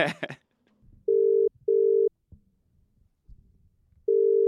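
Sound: phone call ringing out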